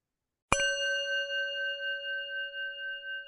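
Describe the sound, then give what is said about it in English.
A single bell is struck once to end 30 seconds of silence for the animals, ringing out with a clear metallic tone that sustains and slowly shimmers for several seconds. No voices are heard. “I invite you to join me in 30 seconds of silence for the animals, and we'll conclude with the sound of the bell.”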